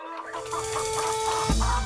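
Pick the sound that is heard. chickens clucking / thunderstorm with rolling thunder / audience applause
chickens clucking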